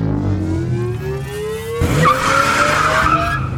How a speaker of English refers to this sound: As soon as he did, he heard the throaty roar of the car's engine, followed by a squeal of tires.